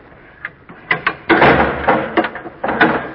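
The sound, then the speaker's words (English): A heavy door closes with a run of deep, resonant clunks and rattling thuds, like latches and bolts settling, fairly loud and with no one speaking. “The door is very effective. It once frustrated a Turkish army.”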